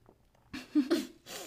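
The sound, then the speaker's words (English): After a quiet moment, a few short, breathy slurps of two people sipping coffee, airy and hissing, with no one talking. “The awkward silence of us both sipping on coffee.”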